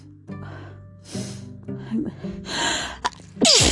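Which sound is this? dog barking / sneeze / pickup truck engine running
sneeze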